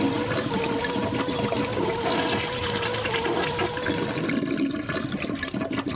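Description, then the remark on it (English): A toilet flushes with a steady, loud rush of swirling water that churns and gurgles for several seconds, then slowly thins out toward the end. No one speaks. “Well, collectively, you're all going in the swirler.”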